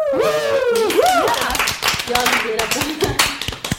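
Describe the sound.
A small group in a studio claps their hands to welcome the week's guest, a loud, irregular patter of sharp claps, while voices whoop and call out over the applause at the start.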